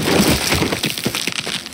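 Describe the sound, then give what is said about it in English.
A loud, wet crunch with sharp cracking and crackling textures spread over a couple of seconds, as a person falls from high up in a tree and lands on their back on the ground, their ribs breaking. “I hit the ground, not with a thud, but with a revolting crunch.”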